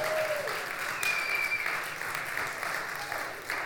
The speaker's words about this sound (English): Thank you for that tepid applause for my parents' 49-year accomplishment.